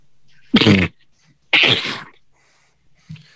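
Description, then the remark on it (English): Two loud sneezes about a second apart, each a sharp, breathy burst, followed by quiet and a brief faint sound at the end. “you should not go in because you can't stop yourself from sneezing.”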